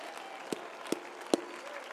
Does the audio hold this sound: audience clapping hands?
yes